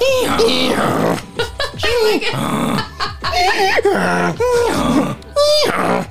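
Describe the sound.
Two people, asked to make donkey noises, imitate a donkey's bray, overlapping hee-haw calls with strained, rising and falling pitch, loud and continuous for about six seconds with brief breaks between bursts.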